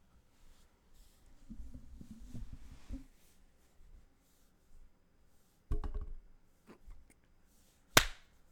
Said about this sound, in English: Gonna clap at 25.